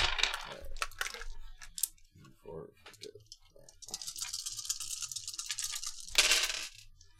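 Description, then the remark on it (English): Six dice clatter and rattle as a player rolls them during a tabletop role-playing game: a few sharp clicks at first, then a long, steady shaking rattle that ends in a brief, louder burst of clattering. “go ahead and give me your roll.”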